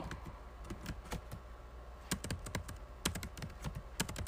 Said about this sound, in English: You hearing me typing? Let me see if I can find it.